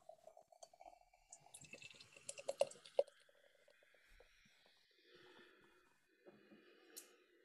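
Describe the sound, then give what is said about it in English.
Pale golden beer is poured into a glass, a gurgling splash that builds with clinks and fizzy crackle, then settles into a soft foamy hiss before a final light tap. “I was about to say that you do get that creaminess on the nose, and well, let's just get it poured.”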